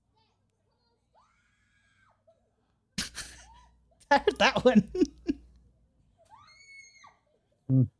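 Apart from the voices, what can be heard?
loud screaming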